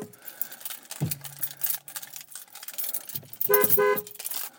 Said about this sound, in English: And I'm honking at Emily's dad.